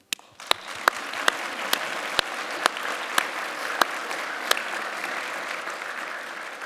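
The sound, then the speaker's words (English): An audience gives holy applause to the Lord, a dense wash of many hands clapping with a few sharper individual claps standing out at irregular intervals, sustained at an even level throughout. “we should give him, the Lord, some holy applause.”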